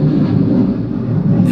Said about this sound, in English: The Blue Angels? Yeah. Sorry. Like, they're doing an air show here this weekend. And so they've been running Blue Angels around my neighborhood nonstop for 4 days. It's so irritating.